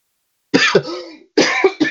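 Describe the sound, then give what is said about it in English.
Two bursts of harsh coughing, each a quick pair of hacks, separated by a short pause with a raspy trailing breath after the first. “you got me coughing.”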